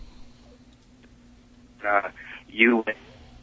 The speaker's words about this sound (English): Like, his phone cuts out right when he's praising us.